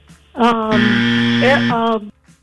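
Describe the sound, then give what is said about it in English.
A quiz game's 7-second timer buzzer sounds loud and steady for about a second and a half, a flat, harsh low-pitched drone rich in overtones, with a voice speaking over its start and end. “There's the 7 second buzzer.”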